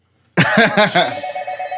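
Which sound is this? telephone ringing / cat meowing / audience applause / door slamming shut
telephone ringing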